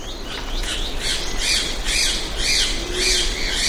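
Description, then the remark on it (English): A ribbon-tailed astrapia, a bird of paradise, at the forest edge gives a rapid series of harsh, raspy squawks, about two per second, loud, over a steady hiss of forest background with no talking. “Picture one named the ribbon-tailed astropia as it flies along the forest edge.”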